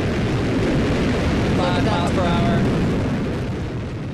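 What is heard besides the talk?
rocket engine roar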